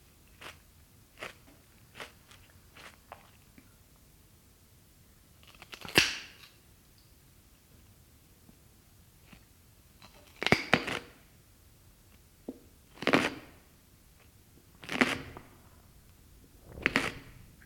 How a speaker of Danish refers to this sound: en gulerod, der bliver skrællet, og en gulerod, der bliver spist sådan binauralt